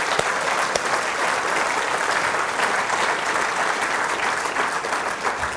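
A church audience applauds steadily after watching a video celebrating 40 days together, thanking those who made it, a dense wash of many hands clapping at a constant, fairly loud level for several seconds, with no voices rising above it.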